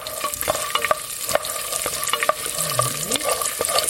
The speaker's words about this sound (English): We stir the walnuts over medium heat for a few minutes and then add garlic and a generous pile of anchovies, which are supposed to dissolve in the heat.